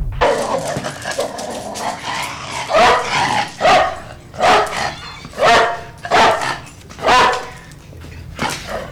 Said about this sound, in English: It opens with a sample of …. Oh, really? … and a dog barking.